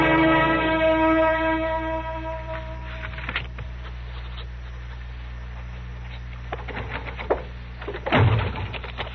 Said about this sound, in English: The door just slipped out of my hand. That's all that happened. You nearly broke it off.